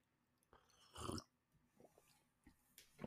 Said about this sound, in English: Just sipping some coffee there.